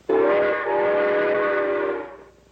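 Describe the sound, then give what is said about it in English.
A loud, sustained train whistle blows for about two seconds, its steady chord of tones briefly dipping near the start before trailing off. No one speaks. “All right, now, how does a train go?”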